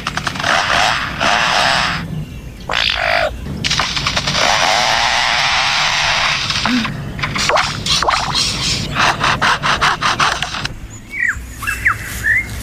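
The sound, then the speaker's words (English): A lyrebird mimics the chainsaws of foresters at work: loud buzzing revs and stuttering rattles come in repeated bursts, ending with a few sharp, natural-sounding bird chirps. No one speaks. “And now, the sounds of foresters and their chainsaws working nearby.”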